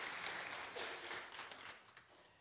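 A church audience applauds the pastor steadily, a dense wash of many hands clapping at once that holds fairly loud before tapering off slightly toward the end, with no voices on top.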